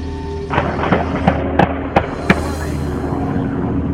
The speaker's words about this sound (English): and as he began to drive away in the truck, he fired a few more shots at the police. But this time, authorities fired back. You're about to hear the actual gun shootout.